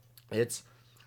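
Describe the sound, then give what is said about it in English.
A single quick sip of water and swallow, a short throaty gulp followed by a soft breathy exhale, heard over a faint steady low hum with no talking. “Excuse me, I need some water.”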